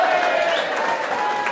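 A crowd claps steadily, a dense, even wash of many hands that keeps the same loudness throughout, with a faint tonal whistle or cheer running through it.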